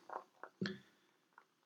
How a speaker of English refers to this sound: So let's go ahead and pop this sucker open and see what we're dealing with here. All right. And nice pour into a glass here.